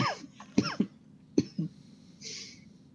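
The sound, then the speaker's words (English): A short coughing fit: several sharp, rasping coughs in quick succession, a pause, then two more hacking coughs, followed by a faint breathy exhale. No speech. “In between my fits of coughing.”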